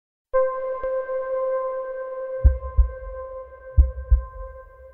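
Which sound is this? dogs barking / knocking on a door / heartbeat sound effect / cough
heartbeat sound effect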